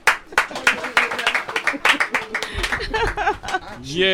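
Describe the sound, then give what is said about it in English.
A short, delayed burst of uneven hand claps after a short play ends, loud and irregular, fading after a couple of seconds as voices talk and laugh over them. “My delayed clap. Say that's my applause.”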